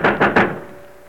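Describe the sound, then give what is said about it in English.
Three heavy pounding blows land on a locked door in quick, even succession, loud, with a short resonant decay after the last strike. “Open this door. Open this door, Brams. Cut him and break it down if you don't.”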